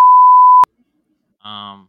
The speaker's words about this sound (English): please beep this out